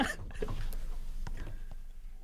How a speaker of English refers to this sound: Okay, so my mother told me that I gulp really loudly. So let me know if I gulp loudly or if she's a bitch.